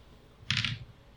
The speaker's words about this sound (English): So let's go ahead and fight. Okay, so roll those dice.